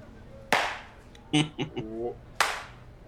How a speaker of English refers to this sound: You can't talk and then do a slow clap.